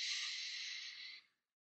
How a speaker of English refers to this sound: So take a deep breath in. Let it out. One more time, deep breath in.